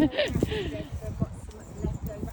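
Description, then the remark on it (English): Little horses shift and step, their hooves clopping in an uneven rhythm alongside a few snorts, with muffled voice sounds mixed in. “how are they? Are they good? The little horses.”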